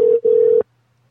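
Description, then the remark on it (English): After a dropped phone call, a steady, loud telephone line tone sounds in two bursts, briefly cut off in between, then stops abruptly into silence with a faint low hum. “There's a major issue with phones going on.”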